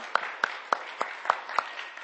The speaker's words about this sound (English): Yes, let's give them an applause again.